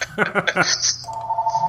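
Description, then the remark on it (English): A telephone rings in the background with a rapid burst of trilling chimes followed by a steady electronic tone, moderately loud and heard without any talking over it. “Sorry about that ringing in the background.”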